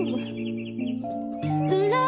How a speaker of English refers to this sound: Ew. The birds are kind of creepy. You didn't realize this has a minute and a half bird lead in? I had to trim all the birds.